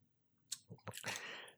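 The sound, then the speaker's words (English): A single sneeze, with a few short sharp intakes leading into a breathy, hissing burst that trails off, fairly quiet, with no talking. “God bless you.”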